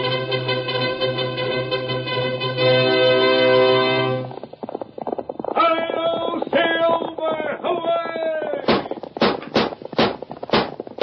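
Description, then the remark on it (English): Orchestral music opens with sustained brass-like chords, then gives way to a run of sharp, evenly spaced hoofbeats of a galloping horse, loud and close, over the final few seconds. “A fiery horse for the speed of light, a cloud of dust, and a hearty hi-yo, Silver, the Lone Ranger.”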